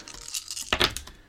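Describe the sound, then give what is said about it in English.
Seven dice clatter across a hard surface: a quick run of small, sharp clicks with a louder knock partway through, fairly quiet, with no talking. “Right, so I rolled 7 dice there, and let's take a look how many successes there are.”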